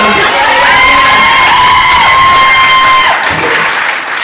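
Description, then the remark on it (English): A loud crowd bursts into sustained applause and cheering, with high whoops and shouts riding over dense clapping that holds steady for about three seconds before easing off. “You should definitely give me a round of applause for being able to breathe in these goddamn skinny jeans.”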